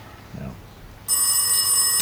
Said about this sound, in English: When the phone once again rings.